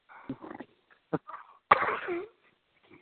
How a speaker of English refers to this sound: He just took a big sniff of his drawers, man. That dude is gross.